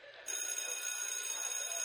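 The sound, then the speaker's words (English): A draft bell bursts into a loud, continuous ringing after a brief quiet start, a shrill, steady metallic clang holding at full volume to the end, with no voices. “Give me the draft bell.”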